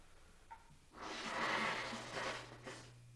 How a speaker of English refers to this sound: Oh, my God. I gotta blow my nose. Hold on.